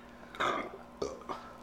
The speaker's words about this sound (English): And why are you always burping into the mic, dude? I burped actually into the TV. The mic is on my right.